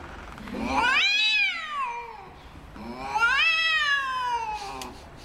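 Two long, drawn-out cat meows, each rising and falling in pitch with a whiny, wailing quality, with a short pause between them and no talking.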